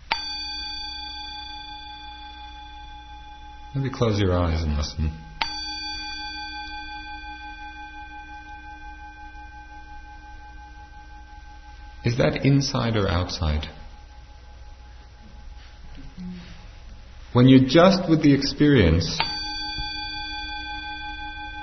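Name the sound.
bell ringing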